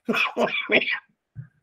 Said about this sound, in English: Still getting over the cough.